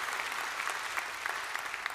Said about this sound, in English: If you believe it, give the Lord a clap offering of praise.